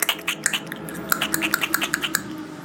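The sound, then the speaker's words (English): Someone imitates a croaker fish with a quick, irregular string of dry clicking pops, around a dozen or more sharp taps in under three seconds, moderately loud, with no talking. “That's got to be some kind of fish. You know what a croaker is?”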